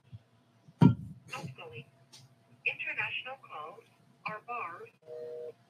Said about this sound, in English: So many numbers. Stand by while we call them. We're calling different country right now.